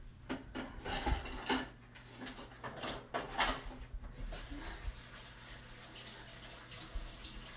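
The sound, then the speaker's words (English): Water runs from a tap into a sink while dishes and utensils clink and clatter in short bursts, then the flow settles into a steady rush. “Don't feel like you have to do all the dishes.”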